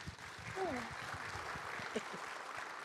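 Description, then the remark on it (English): An audience claps steadily, a dense wash of overlapping hand claps that stays fairly loud throughout, with a brief vocal whoop or cheer rising over it early on. “Clap it up”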